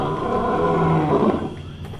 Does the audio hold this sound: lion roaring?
yes